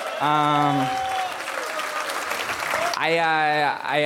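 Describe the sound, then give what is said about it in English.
An audience bursts into steady, loud applause for Brutus "The Barber" Beefcake, with long sustained whooping cheers from voices at the start and again near the end over the dense clapping. “Clap for this great man.”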